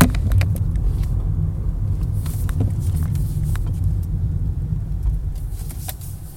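A car engine rumbles low and steady as the vehicle slowly maneuvers into a parking space, with scattered light clicks and taps over the continuous drone and no one talking.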